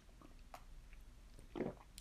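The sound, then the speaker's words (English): Someone takes a quiet sip of a drink: a soft click of the lips, then a brief wet gulp, with no talking. “1 second, taking a sip.”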